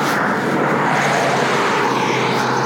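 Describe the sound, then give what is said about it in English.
A car drives past, its tyres and engine making a loud, steady rushing roar that fills the whole moment with no voices. “Car going by.”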